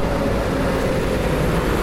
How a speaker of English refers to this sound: Just finished an iced coffee. I'm standing outside the coffee shop. Truck just drove by. I am in the city, Osaka, Japan. Osaka City.